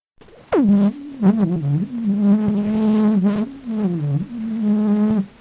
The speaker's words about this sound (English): What you've just been listening to is a phonautogram, a sound recording, made on September 15th, 1860, of the Song of the Bee, as sung by the inventor of sound recording, Edouard Léon Scott de Martinville, one of the very earliest sound recordings